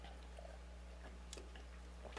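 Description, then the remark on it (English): A quiet sip from a drink: faint wet mouth clicks and a soft slurp over a low steady electrical hum, with no talking. “You just had a little sip.”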